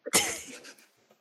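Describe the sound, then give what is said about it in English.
A dog sniffs at a sculpture: a faint short intake followed by one breathy, hissing snuff that quickly trails off into quiet. No one speaks. “The dog is sniffing at the sculpture.”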